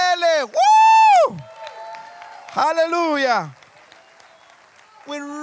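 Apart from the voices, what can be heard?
audience clapping and cheering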